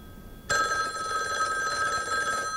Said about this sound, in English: And now at the house where she lives, the other girls are getting obscene phone calls. Yeah, what I've done is I've tapped this phone so that when it rings,